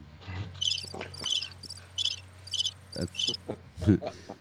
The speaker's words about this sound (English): Crickets.